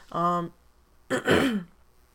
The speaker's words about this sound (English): Sorry, I'm going to clear my throat like once or twice more, I think, throughout the podcast. And you'll just have to bear with me, because I don't feel like editing all of that out.